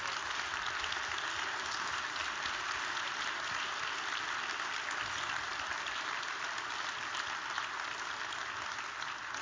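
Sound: audience standing ovation applause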